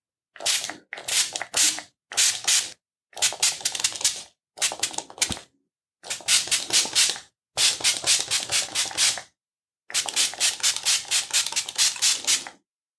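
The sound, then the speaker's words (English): A spray bottle hisses out mist onto a person's chest area in about nine bursts, the early ones short and quick, the later ones longer and pulsing, separated by brief silences with no one talking. “So I'll just spray your chest area down.”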